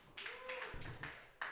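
A brief, fairly quiet round of audience clapping, with scattered individual claps rising and falling and a faint voice or cheer mixed in.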